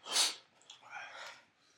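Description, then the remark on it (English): Heavy breathing after eating spicy food: a sharp, forceful huff of air at the start, followed by a couple of softer, ragged breaths that trail off. “I'm sweating. I'm breathing heavy.”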